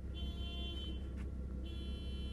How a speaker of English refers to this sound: Shut up, car!